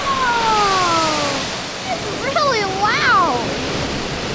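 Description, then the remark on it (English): Water pours and rushes steadily over the edge of a basin at the Harry Tracy Water Treatment Plant in the hills of San Bruno, a loud continuous wash of splashing noise, with a voice making drawn-out exclamations over it partway through. “Oh, that water is getting really high. It's gonna spill over. Oh, there it goes.”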